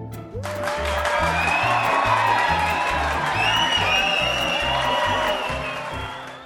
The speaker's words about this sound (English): And the sound of our cheering fans means it is time once again for listener comments.